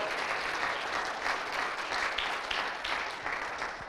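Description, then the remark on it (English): A church audience breaks into steady applause for a church member's birthday, many hands clapping densely and evenly for several seconds at a moderate level, with no voices standing out. “Would you give her a hand clap of appreciation?”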